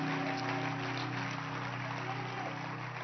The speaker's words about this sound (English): clap your hands and you may please be seated. What a joy to see all of you in church today. Wow. Clap your hands once again.